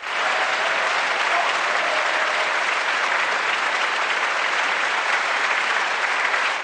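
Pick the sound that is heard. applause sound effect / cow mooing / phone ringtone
applause sound effect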